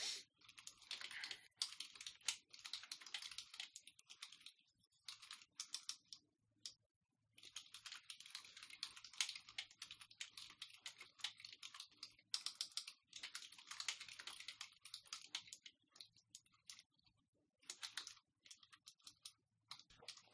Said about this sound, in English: I'm just typing crap.